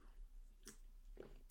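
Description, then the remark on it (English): A person takes a quiet sip of water, with a soft slurp and a wet swallow, followed by a small click of the mouth or glass. “I'm going to have a sip of water here too.”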